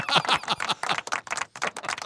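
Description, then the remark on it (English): Studio audience applause, a steady run of sharp, bright hand claps that rise and dip in quick bursts for a couple of seconds, with no voices over it. “How long is this applause? I can't control the studio audience.”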